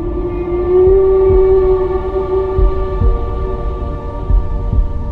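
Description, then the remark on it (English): A whale song: one long, low, droning moan that holds a steady pitch for several seconds, rich in overtones, with soft low thumps underneath and no voices. “Who would imagine that whales could sing?”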